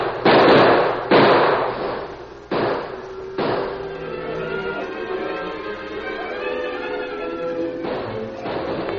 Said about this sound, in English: Lone Ranger fired cautiously, conserving his dwindling supply of cartridges as much as possible. Each shot had a telling effect. The echoing reports goaded the fear-crazed cattle into one mad rush after another.